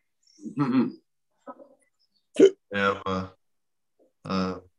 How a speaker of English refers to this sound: Jeez, I sound like a drunk. I've just got these hiccups. I can't beat them.